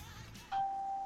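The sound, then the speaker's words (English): A phone's notification ding sounds once, a clear mid-high chime that strikes sharply and keeps ringing steadily to the end, with only faint low background noise before it. “Oh, that was my phone over there.”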